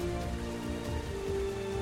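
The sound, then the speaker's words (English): Steady rain falls without a break, a dense, even hiss of drops striking a surface, with a low sustained tonal hum running underneath. No one speaks. “you charge out into the rain, and you can see Kaven and Asher struggling to fight Lucretia there in the rain”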